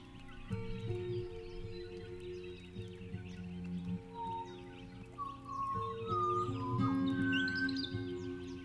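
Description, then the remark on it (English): Chirping, whistled bird calls, notated from real bird songs, weave through an original composition by Ingrid Nielsen, rising and falling over sustained low instrumental tones that swell steadily throughout, with no voices. “Ingrid Nielsen is explaining why bird calls feature so heavily in the piece of music you're hearing now.”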